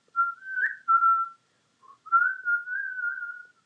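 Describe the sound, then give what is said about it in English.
Someone whistles a short melody in two phrases separated by a brief pause. The tones are clear and steady, with gently wavering pitch and no talking. “And I'm just, like, I keep singing, humming, or, like, whistling.”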